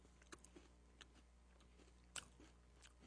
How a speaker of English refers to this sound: No, that's just me crunching.